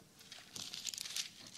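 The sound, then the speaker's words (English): Thin paper Bible pages rustle and crinkle as they are turned, a soft cluster of papery swishes lasting about a second, with no voices. “Do you ever find yourself trying to scroll the Bible, no, the pages, instead of turning the paper?”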